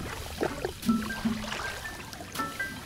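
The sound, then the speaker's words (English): Stormwater flows and rushes steadily outdoors at a river delta in Los Angeles County, Southern California, where it is swept into the ocean; a soft continuous wash broken by small splashes and gurgles, with faint high chirps in the background and no voices. “But about 80% of that precious storm water, it gets diverted toward river deltas like this one, where it's swept away into the ocean.”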